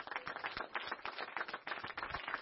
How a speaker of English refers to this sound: And here they come. Let's give them a hand clap while they come.